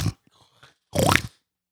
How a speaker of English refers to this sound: Inhaled mucus on mic.